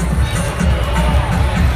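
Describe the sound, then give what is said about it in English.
Steady crowd murmur at a Suns baseball game in the fifth inning, a dense, continuous babble of many overlapping voices at an even, moderately loud level, with no single voice standing out. “This is some audio just from the crowd.”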